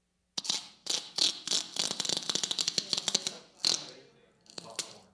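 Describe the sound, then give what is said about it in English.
Sticky tape is pulled from a roll in several ripping strips, each a dense, crackly burst of rapid clicks, the longest lasting a few seconds, followed by two shorter pulls. “Oh, popcorn, but that's not right. But tape, yes.”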